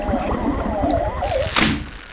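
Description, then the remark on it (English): A single brief splash bursts out near the end as Bobby throws his tow rope into the water of a bay to reach a sunken pirate treasure, over a steady background of soft wavering melodic tones. “Bobby throws his tow rope into the water to reach the treasure and...”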